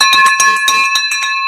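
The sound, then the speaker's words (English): A handbell used as a victory bell is rung rapidly and loudly, several bright clangs in quick succession with a sustained metallic ring underneath, no voices. “There's our victory bell”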